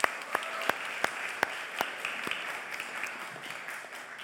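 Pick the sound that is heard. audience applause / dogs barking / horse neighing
audience applause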